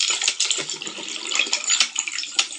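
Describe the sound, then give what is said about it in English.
Underwater dolphin sounds: a dense crackle of rapid clicks, broken by a couple of brief, high-pitched whistles. There is no talking. “And there are some of the whistle.”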